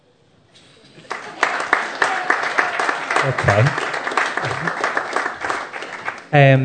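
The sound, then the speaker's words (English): An audience breaks into steady applause lasting several seconds, dense clapping with scattered murmurs, before a single voice speaks briefly at the end; the men in the audience are applauding in answer to a question about whether they know they are guilty of certain behaviours. “How many men, by show of hands, or maybe by applause, know that they're guilty of those behaviours?”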